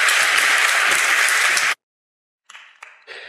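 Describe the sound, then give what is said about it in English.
A crowd applauds loudly with dense, steady clapping for almost two seconds, stops abruptly, then a few quieter bursts of clapping follow after a short silence. “And give these folks a round of applause.”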